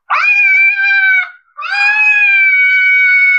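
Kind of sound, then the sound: animal, cat yowling at night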